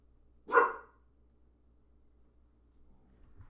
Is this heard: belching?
no